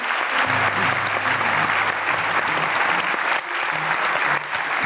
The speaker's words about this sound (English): How about a round of applause for both Kevin and Stu?